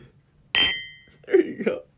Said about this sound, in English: Let's do the cheers thing again. Even though it's, for us, it's like... Wait, it sounds better if this is down here. Wait.